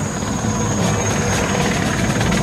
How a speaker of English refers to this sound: At this point right now, the helicopter could just unload its arsenal right unload. There. Unload just everything. Riddle them with bullets.